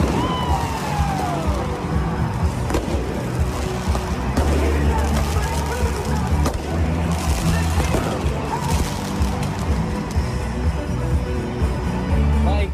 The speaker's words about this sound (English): Wow. Like, they were full these fireworks, like big fireworks. Yeah, like, yeah. Or were these fireworks that were intended for the show that accidentally went off? No. These were fans that were lighting them off, right?